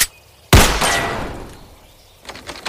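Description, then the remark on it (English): One loud gunshot, fired to shoot off the locks on a door, bursts out after a brief quiet, its blast ringing and fading over a second or so, followed by a few faint, quick clattering knocks. No one speaks. “I'm just gonna shoot off the locks on the door.”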